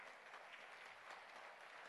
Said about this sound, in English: But the inheritance you will receive is worth it. Clap for that, please. Just clap for that.